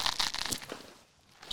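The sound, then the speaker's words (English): Crisp crunching of someone biting into Henny fried chicken wings, a quick run of crackly bites that eases off briefly before one more sharp crunch at the end. “Now I got to see what these Henny wings tasting like.”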